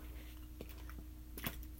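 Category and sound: food or drink, sipping water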